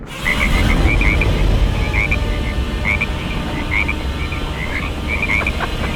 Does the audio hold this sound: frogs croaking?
yes